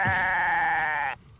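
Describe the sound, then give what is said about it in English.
A person imitates a goat with one long, loud, wavering bleat that holds steady for about a second before cutting off abruptly. “I'm a freaking goat.”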